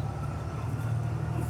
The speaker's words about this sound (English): And now we are catching this bus. This is the bus I take to go home from the office when I work late.